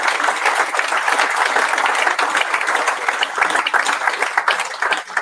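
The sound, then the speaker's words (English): A sustained round of applause from a crowd for the sponsors, dense overlapping claps forming a steady, loud wash of noise that holds for several seconds without talking. “I'm not going to name them all, but all the sponsors, could we please give them a massive round of applause?”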